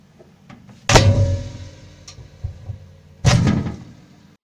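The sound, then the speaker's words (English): Two heavy, resonant bangs about two seconds apart, like a stiff door being wrenched and forced open, with a lingering rattle and low rumble between the impacts. No one speaks. “I think I've forced the door to get a better look at it.”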